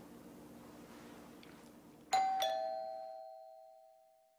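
After two seconds of low background hum, a doorbell sounds a bright two-note ding-dong chime, high then lower, whose ringing tone fades slowly until the end. It is rung by a visitor arriving an hour early for a small group meeting.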